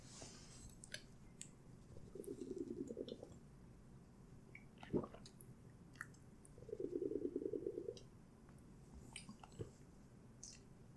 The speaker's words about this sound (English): Yeah, boys, the microphone that I'm using can pick up sounds such as me drinking water. And that's a pretty good one. The Blue Yeti mic is pretty crazy.